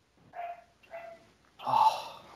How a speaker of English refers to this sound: A barking dog. I'll take your barking dog.